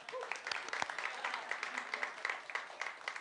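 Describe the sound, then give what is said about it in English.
An audience claps steadily for a few seconds, a dense crackle of many hands with no clear rhythm, fairly soft overall, with maybe a faint voice beneath it. “Y'all should have clapped there.”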